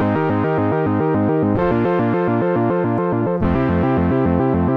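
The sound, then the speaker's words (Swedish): A loud, buzzy analog synthesizer, its mod wheel left set, plays a steady pulsing pattern of two-note chords, harmonically rich and continuous, shifting to new pitches twice along the way with no voices. “Det som är, och det är därför analogsynten har vunnit så många människors hjärtan, för att det finns så, med ganska få knappar så går det att göra sjukt ja, många olika typer av ljud.”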